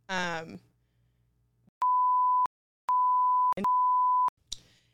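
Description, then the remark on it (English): Three loud, steady censor bleeps at one mid-high pitch, each lasting over half a second, the last two nearly back to back. Brief bursts of speech come before and after them. “And yeah, bleep these out.”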